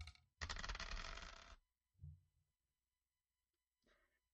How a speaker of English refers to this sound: Reminder, I'm only rolling one dice right now.